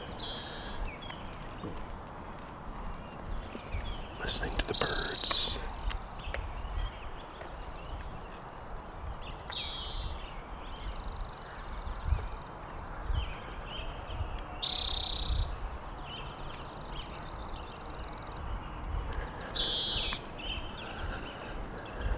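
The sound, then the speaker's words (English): Birds call outdoors in short, bright bursts every few seconds, with thin sustained chirping in between, all over a steady rustling background of wind or other noise. No one speaks. “And, you know, keeping my eyes open, keeping an eye on Coyote happenings around the area, and listening to the birds.”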